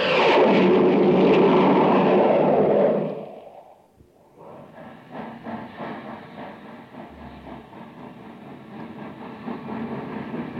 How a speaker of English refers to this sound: Say, did you hear that, gang? That was the Terra Express train trying to get up speed on ordinary fuel. Not very speedy, was it?